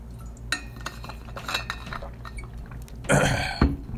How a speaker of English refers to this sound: Take a sip of coffee, some water, then I'll actually start.